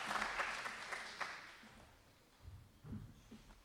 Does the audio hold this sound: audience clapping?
yes